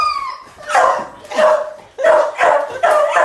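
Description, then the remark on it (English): A beagle lets out a brief high whine, then barks four times in a steady rhythm, each bark loud and roughly a second apart, with no one talking. “Hold on, let me get the dog.”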